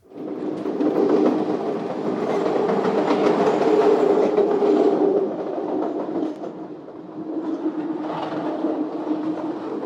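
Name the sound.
train riding on rails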